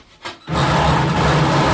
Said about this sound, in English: Now we're drilling.